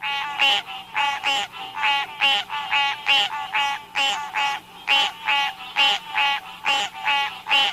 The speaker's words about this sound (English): Oh, so that's one of our tree frogs that we have here in this area, the green tree frog. It's a beautiful frog. You can't mistake it for any other frog that we have here. I love their call too.